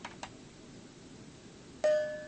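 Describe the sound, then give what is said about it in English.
A camera shutter clicks as a picture is taken with a remote's circular button: two quick, faint clicks come first, then a louder snap leads straight into a steady, mid-pitched electronic tone that holds to the end. No one speaks. “That shutter sound, you could hear it take the picture.”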